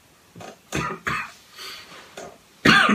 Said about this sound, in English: I'm so sorry for coughing this much in this podcast. I feel disrespectful. I don't know what's happening. I need some water, but I can't take a break.